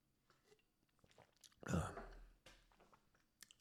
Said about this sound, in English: Coffee sip.